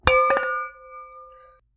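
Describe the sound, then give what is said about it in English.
Wine glasses clink together twice in quick succession in a toast, bright ringing tones that hang and slowly fade over about a second, with no talking. “I'm going to drink mine. Oh, you know, that does sound like a better idea. All right. Cheers. Cheers.”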